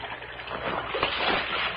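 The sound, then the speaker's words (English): A dead man's body is dropped back into a creek with a muffled splash, followed by sloshing and churning water noise for a couple of seconds, moderately loud. “Drop him back in the water.”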